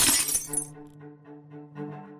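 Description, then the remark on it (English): A thrown glass ashtray shatters in one sharp, loud crash about 2 inches from a person's nose, followed by a couple of seconds of bright, fading ringing as the pieces settle. No one speaks. “I'm talking about like a glass ashtray shattered like 2 inches away from my nose.”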